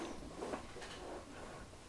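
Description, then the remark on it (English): A chair creaks quietly as someone shifts in it, producing a couple of drawn-out wooden groans over about two seconds, with no talking. “Can everybody hear my chair?”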